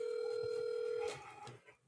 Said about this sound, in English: Let me call him on the phone. We're going to do something over the phone.